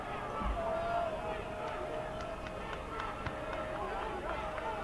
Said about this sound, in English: 34-34 in the second overtime. You can hear the Blue Raiders cheering across the way, cheering on their defense. Third down, four from the 19.